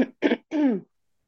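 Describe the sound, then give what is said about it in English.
A person clears their throat: two short rough bursts followed by a longer, lower voiced rasp, then silence. “Sorry, I need to clear my throat.”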